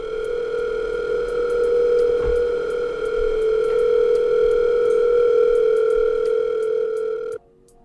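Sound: telephone ringing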